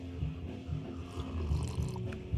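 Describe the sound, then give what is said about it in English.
Someone sips hot coffee made in Deer Isle, Maine, from a brand-new mug on the mic: a soft, wet slurping draw that stretches over a couple of seconds, quiet and airy with a low murmur underneath and no talking. “So I'm going to embrace that and take my sips of coffee on the mic.”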